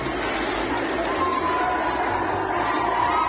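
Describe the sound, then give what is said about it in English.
A loud, dense crowd roars and cheers continuously as female protesters disrupt a rally held in support of the Taliban in Bamyan province, Afghanistan, tearing down banners on April 4th; many voices blend into a steady wash of noise with a few higher shouts rising above it. “On April 4th, they disrupted a rally held in support of the Taliban, tearing down banners to the sounds of cheers and demanding that schools for girls be reopened.”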